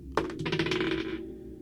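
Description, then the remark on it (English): A die clatters onto a hard table with a sharp initial hit, then rattles in a quick run of small clicks for about a second before settling, fairly loud; it is rolled for a perception roll in a game and lands on a 6. “No, that dice is coming out of rotation.”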